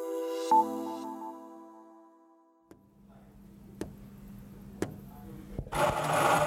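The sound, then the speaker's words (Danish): After a fading tonal chime, a coffee machine runs with a low steady hum and a few sharp clicks, then breaks into a loud, rushing grind and hiss. “Stop lige kaffemaskinen gang.”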